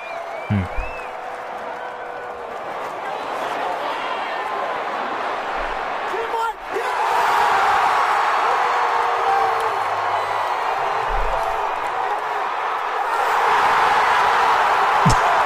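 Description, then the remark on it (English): A large Major League Baseball stadium crowd roars and cheers steadily for the full span after an 8-5-3 double play, swelling louder around midway and again near the end, with scattered whoops and clapping in the dense wash of noise. “This is what it sounds like for an 8-5-3 double play.”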